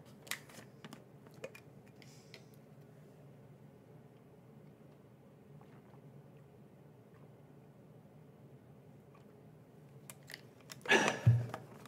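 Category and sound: food or drink, sipping and swallowing water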